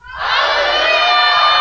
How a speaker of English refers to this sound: All right, ready? On the count of three, we're going to shout hallelujah, okay? We're going to practice. We're going to warm up here, all right? All right, one, two, three.